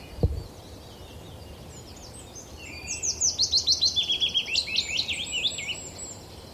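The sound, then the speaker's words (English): A willow warbler sings a clear, descending cascade of sweet whistled notes over a steady rushing background of a small stream fresh off the mountain, among tangled oaks, with a brief thump at the start. “Willow warbler.”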